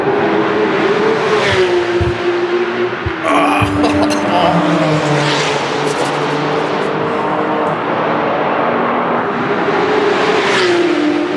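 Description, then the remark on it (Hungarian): A racing car engine howls loudly and continuously, its pitch climbing as it revs and then dropping sharply with each upshift, repeating through several gear changes. “Jaj, ezt hallod, amikor bong, ilyen recsembe vált egyet fölfelé. Na ez az az autó, aminek semmi létjogosultsága nem lenne Magyarországon”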